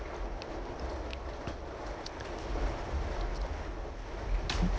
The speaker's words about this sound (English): And I apologize if you all may hear the rain battering against my window. It's a really hot day today. And all of a sudden, a cloud has just rolled in. And just like that, the rain has started falling.